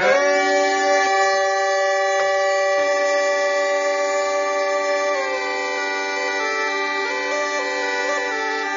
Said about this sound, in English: It's called a glove pipe. It's just like a bagpipe, but except it's a glove pipe. So he kind of made this. He kind of created this out of a balloon.